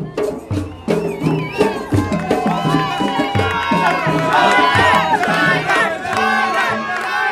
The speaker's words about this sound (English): Back with the ballad group in the street with no name, and the crowd are calling for a local man to play the Bodhrán.